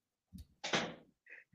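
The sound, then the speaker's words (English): A door slams shut with a sharp, heavy bang that rings briefly as someone comes in, preceded by a soft low thump and followed by a faint click. “just came in and slammed the door.”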